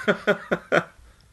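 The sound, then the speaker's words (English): A pet cat meows loudly in the background four times in quick, evenly spaced succession, each cry short and bright with a strained, nasal tone, before it falls silent. “Sorry, my cat is meowing very loudly in the background, so that might be an edit point.”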